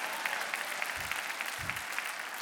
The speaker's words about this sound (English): there we go, there's the applause.